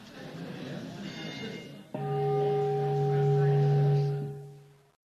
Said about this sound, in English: Yeah, do ring the bell there. Thank you. I didn't ring this very loud.